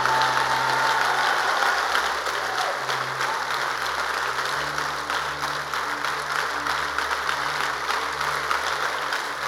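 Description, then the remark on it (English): A church audience claps steadily and loudly to make a joyful noise to the Lord, a dense wash of many hands beating together without pause, with a low hum running underneath and no voices standing out. “Are you sure you are clapping?”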